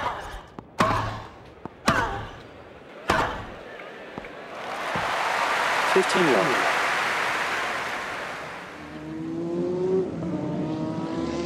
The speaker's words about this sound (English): I was doing American car racing, they call it NASCAR, and this particular race was a half-mile oval, and essentially what would be considered a football-type stadium with very high banking. The cars put out 140 decibels of sound, maybe more.